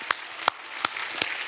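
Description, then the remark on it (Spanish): An audience applauds the Lord during a church sermon: a steady, hissy wash of many hands with four sharp, evenly spaced claps punching through in a brisk rhythm. No one speaks. “Si le va a dar un aplauso, dárselo bien fuerte al Señor.”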